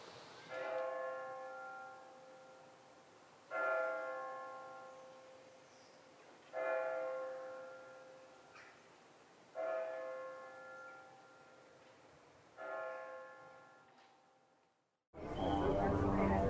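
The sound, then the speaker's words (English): A church bell tolls five slow, evenly spaced strikes, each ringing out clearly and fading before the next, until the sound cuts off abruptly into a brief burst of other noise. “St. Peter rings a bell, and so does St. Paul.”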